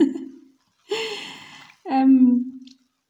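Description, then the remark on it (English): A cat on a windowsill squeaks three times in short bursts, the first fading out, the second breathy and scratchy, the last a louder, drawn-out squeal, with brief silences between. “So just as I took a pause to fill the bath up with hot water again, the cat appeared on the windowsill and is making a very annoying squeak in the background just when I was getting to a key point.”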